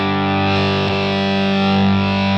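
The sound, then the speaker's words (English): A heavily distorted electric guitar chord rings out thick and crunchy through a pedal set at about 3 o'clock, with the guitar's volume brought down, with dense buzzing harmonics and a slight wobble, sustaining loudly for a couple of seconds with no talking. “I'll do like a cool, weird, crunchy.”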